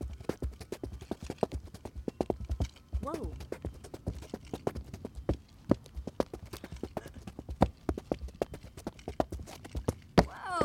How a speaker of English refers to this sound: You tap dance. I'll hold the mics to your feet. God, on concrete? I can. Here, go on that slab. Yeah, you weren't. We have a slab, a wall here. We'll hear some shuffling.